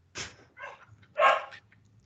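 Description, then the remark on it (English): A dog barking sound effect played from a soundboard: three barks in quick succession, a sharp yelp followed by a softer bark and then a louder, fuller one, with no one talking over it. “That's the one sound effect I have is the dog barking.”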